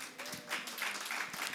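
An audience applauds, a steady wash of many hands clapping at once, fairly soft and continuous for the whole moment without any voices standing out.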